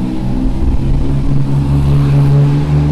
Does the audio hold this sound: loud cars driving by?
yes